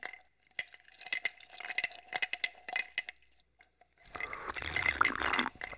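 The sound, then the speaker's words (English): A few light clinks and taps, then mineral water is poured from a bottle in a steady, gushing stream for the last couple of seconds, with no talking. “I'm having mineral water out of a bottle.”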